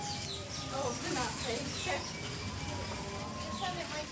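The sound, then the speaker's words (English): Many birds chirp and twitter continuously inside a giant walk-through aviary where the birds can fly freely, their calls overlapping, with indistinct voices murmuring faintly in the background. “We now walk into one of the best ways I think we exhibit birds, and here is the animal kingdom, and that is in these giant aviaries.”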